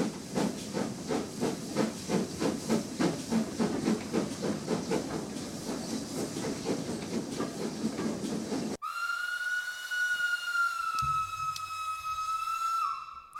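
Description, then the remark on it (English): A steam train chugs with steady, rhythmic hissing puffs for several seconds, then a loud, sustained steam whistle blows until the end. No voices are heard. “All right, but this time we're gonna get to Hogwarts through the train. Yes, Hogwarts Express.”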